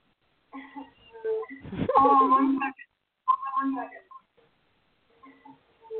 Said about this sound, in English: A lot of chaotic echoes going on here. Yeah, she might have her speakers up, and then she's talking on the phone too. So there's probably a double echo because of that.